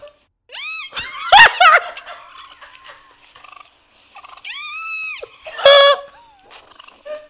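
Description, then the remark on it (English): A turkey gobbles loudly in two rattling bursts, each with warbling harmonic calls and a sharp burble, separated by a short pause; no talking. “This fucking bird chased her around the car. What a bully. I don't know why presidents pardon this shit.”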